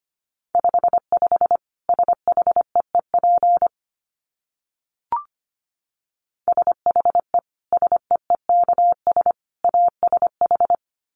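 Rapid Morse code at about 25 words per minute: a steady mid-pitched tone keyed into short and long beeps, sent in two bursts separated by a pause with a single click.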